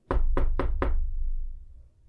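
Four quick, firm knocks on a wooden door, evenly spaced and close by, followed by a low resonant hum that lingers and fades. No voices are present.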